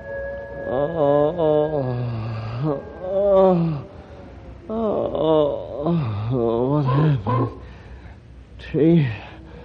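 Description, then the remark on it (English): Several drawn-out, wavering howls rise and fall in overlapping bursts, with rougher growling tones between them, fairly loud; wolves in almost every direction. The cries may be voiced by a person imitating wolves. “Almost in every direction, wolves.”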